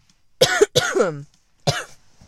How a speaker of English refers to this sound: Sorry, I got a cough.